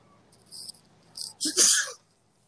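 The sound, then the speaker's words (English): A single loud sneeze: a couple of quick breathy intakes build up, then a sharp explosive burst that cuts off abruptly, leaving near silence. “Bless you.”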